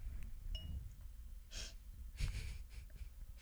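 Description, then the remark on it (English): Two sharp nasal sniffs at a glass of Cabernet Sauvignon wine, one short and one longer, over low rumble, with a faint glassy ting just before them. “Good sniff, good sniff.”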